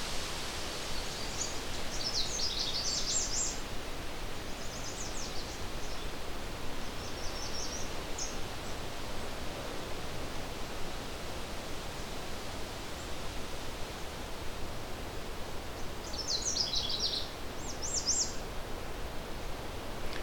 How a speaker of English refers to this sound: Back to the Canada warbler.